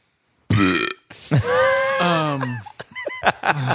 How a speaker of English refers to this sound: We got a revolving door because I will belch in people's faces.